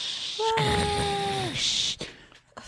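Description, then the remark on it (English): A voice mimics a cheering crowd with a sustained, wavering 'aaah' tone over breathy hiss, lasting about a second before trailing off into a few scattered noises. “The crowd goes wild.”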